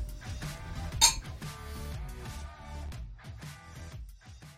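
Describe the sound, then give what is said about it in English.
Glasses clink together once in a bright, sharp toast, the ringing tone lingering briefly over a low, steady background murmur of tonal sound, with no one speaking. “So raise your glass. Cheers.”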